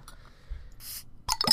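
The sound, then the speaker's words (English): A Belgian ale is popped open with a brief hissing fizz, then a burst of splashing and sharp liquid clatter ends the short clip. No one speaks. “Pop your beer.”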